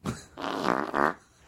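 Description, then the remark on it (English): A wet, juicy fart rips out, starting with a short sputter and then stretching into two longer, buzzing, fluttery bursts before trailing off. “That's a juicy one. That had teeth.”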